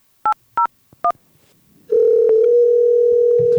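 Three short keypad beeps from a phone dialing, then a steady electronic ringing tone that holds on clearly to the end, with no voices; a phone call ringing before it goes to voicemail.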